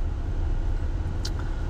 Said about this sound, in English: I'm actually headed to the golf course, so I'm doing some of the recordings here in the car, which is pretty cool.